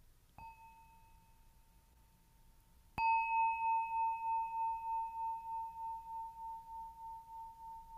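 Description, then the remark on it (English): A bell found in Japan, thought to be brass, is struck twice, first softly and then much harder, and the second strike rings on in a long, pure, gently pulsing tone that slowly fades. No one speaks. “And so as you will have heard on each of the bells, what we're listening for is this really lovely resonance that just keeps going.”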